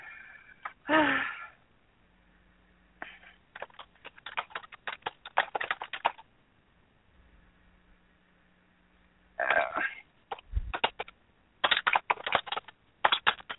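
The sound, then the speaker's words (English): Bursts of rapid, irregular keyboard typing, fairly crisp, come in two runs separated by quiet stretches, with a couple of louder, breathy bursts mixed in, as a person browses and types. “I'm sitting over here browsing, typing.”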